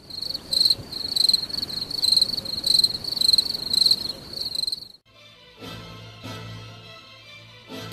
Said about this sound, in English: Can I get some crickets, please?